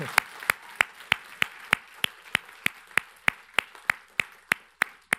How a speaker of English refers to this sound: can we clap for her loud enough so if she's far away, she can hear it?